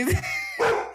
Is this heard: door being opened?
no